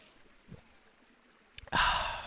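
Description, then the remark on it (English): A quick sip of water with a couple of small mouth clicks, followed at once by a loud, breathy exhale of satisfaction. No one speaks. “Now, as it is customary, I am going to take a sip of water.”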